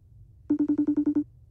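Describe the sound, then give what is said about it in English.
A phone rings during an outgoing call to a friend, in a quick, even burst of about eight bright electronic pulses at a steady tone. The sound is clear over a low background hum, with no one talking. “All right, we're phoning a friend.”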